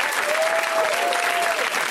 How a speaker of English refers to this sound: And also, while you're at it, why don't you give a round of applause to everybody you saw tonight?